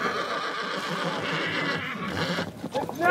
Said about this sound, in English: 50 mile horses! Horses start arriving.